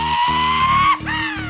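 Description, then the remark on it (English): A horse being ridden gives a loud, wavering neigh for about a second over a steady low drone, then a short rising and falling yeehaw-like whoop, with cowbell sounds. “That's cowbell sounds, and then a yeehaw kind of sounds, and a neigh. That's a horse that they're riding.”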